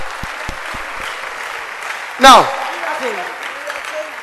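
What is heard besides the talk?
audience clapping hands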